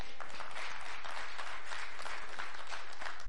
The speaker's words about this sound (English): Church, time to applause.